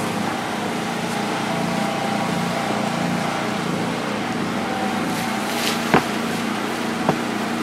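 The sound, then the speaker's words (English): A generator at a campsite drones steadily throughout with a low, even engine hum and no pauses, while a couple of brief clicks or knocks pop out near the end. “Picking up the generator pretty good too.”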